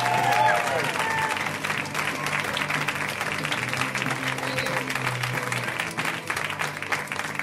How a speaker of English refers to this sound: And so we're going to give him a giant fucking round of applause right now. Am I right? A very funny man.